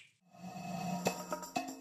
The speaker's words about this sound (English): Go ahead and snap your fingers and make that happen.